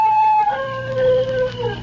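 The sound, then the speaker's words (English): A dog held on a leash lets out a single long howl, a loud, sustained tone that wavers and slides gently downward in pitch over a couple of seconds, with no voices. “He howled.”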